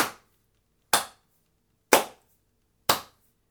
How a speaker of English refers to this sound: He wasn't really expecting to applaud during this runway, but he's clapping, so that's fun.